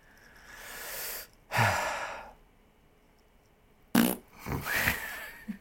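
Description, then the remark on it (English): A few breathy blowing bursts made with the mouth, imitating flatulence, separated by short pauses, with a longer raspberry-like buzz near the end and no speech. “Little mouth fart.”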